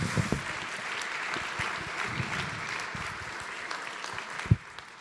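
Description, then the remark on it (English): A crowd at a church gathering claps steadily for about five seconds for a man as he sits down, a dense wash of many hands with a few sharper claps standing out, fading slightly at the end with a faint murmur. “Let's give him another clap as he sits down.”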